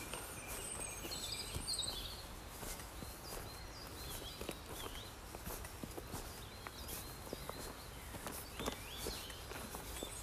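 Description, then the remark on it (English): Steady footsteps crunch along uneven outdoor ground of changing texture, each step a sharp scuff, while birds chirp faintly in the background amid a low wash of ambient noise. “Listen to the birds, the river, your footsteps on the floor, the change of texture on the ground.”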